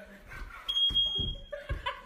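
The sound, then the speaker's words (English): A smoke alarm in a house, set off by cooking pancakes, lets out one shrill, high-pitched beep lasting under a second, cutting through laughter and excited voices. “Every time I cook pancakes, I set off the smoke alarm in our house.”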